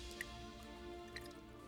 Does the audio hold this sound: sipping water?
yes